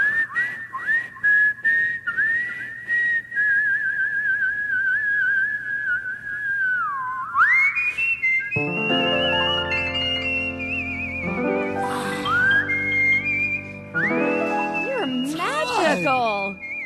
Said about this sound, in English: People don't realize you're really whistling.